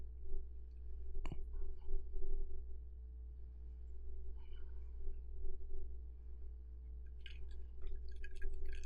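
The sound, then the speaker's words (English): Ice cubes clink in a cocktail glass: one sharp, bright clink early on, then a quick cluster of light, high tinkling clinks near the end, over a steady low hum with no talking. “If you hear that little sound, that's ice clinking.”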